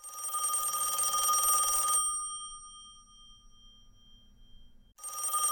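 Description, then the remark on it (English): A rotary telephone bell rings loudly with a metallic, dense jangle for about two seconds, pauses in near silence, then starts ringing again. “Is the phone actually ringing this week? It is. It is. Let's see who's on the rotary.”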